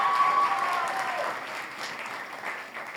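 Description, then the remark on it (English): A crowd applauds steadily for about three seconds in support of a woman called up to the front, a dense wash of clapping that stays fairly loud throughout with a brief whistle-like tone near the start. “Can we give her some support and a round of applause?”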